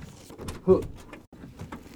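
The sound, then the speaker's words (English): A door is opened with a short, muffled clunk and scrape lasting under a second, surrounded by faint murmuring voices and low background noise. “Just open the door for a second.”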